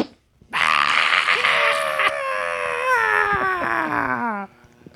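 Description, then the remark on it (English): A person imitates a scream, letting out a loud, sustained scream lasting about four seconds, a strained, wavering shriek whose pitch slowly slides downward before it cuts off abruptly into quiet. “I am the human scream. You can debilitate bad guys with his scream.”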